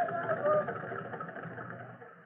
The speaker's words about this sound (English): Slowly, with her engine straining to the utmost, the fireboat pushes the great flaming barge down the river.